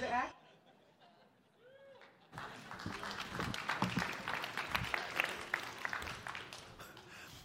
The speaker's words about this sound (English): I interpret by that applause that you don't know how to respond to that.